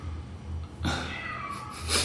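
A single drawn-out cat meow in Buenos Aires, fairly high-pitched and sliding downward, starts abruptly and rises over a steady low hum before fading, with a brief breathy noise at the end.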